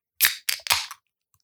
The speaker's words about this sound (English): That's a fine crack. From a fine can.